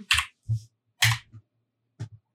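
Eight dice being rolled: a few quick clattering bursts with soft thuds, like dice tumbling onto a tabletop in separate handfuls, fairly quiet, with short pauses between them and no talking.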